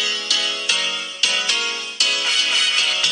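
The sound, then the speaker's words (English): A bright, melodic phone ringtone plays loudly and steadily, its notes striking in a quick rhythmic pattern with sharp repeated attacks, no voices over it. “This is what rings when my phone rings.”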